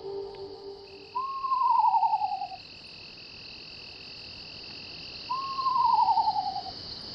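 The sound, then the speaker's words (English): A screech owl, recorded in a backyard, gives two descending, quavering whinny calls several seconds apart, clear, over a steady hum of night insects. “That's a screech owl I recorded in our backyard.”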